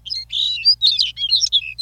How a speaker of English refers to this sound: A sparrow-sized Lapland longspur perches atop a short stem, showing off his rich black-colored face, smartly outlined in rust and white. The longspur flaps upward 100 feet, then sings his languid song as he drifts slowly back to earth.